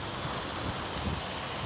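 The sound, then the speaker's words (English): Loud, continuous rush of churning water and surf spilling over a seawall at high tide during a storm in St. Augustine, with heavy wind buffeting the microphone, a steady roar of storm-driven waves with no voices. “at the height of high tide, water spilled over the seawall, washing out roads and sidewalks more than a mile and a half.”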